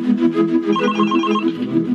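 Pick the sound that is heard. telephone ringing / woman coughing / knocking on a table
telephone ringing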